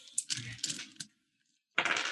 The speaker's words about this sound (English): Yes, make me a conflict roll with a dice pool of 5.